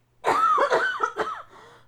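A person gives a fairly loud burst of several rough coughs in quick succession, trailing off into a softer throaty exhale, with no talking.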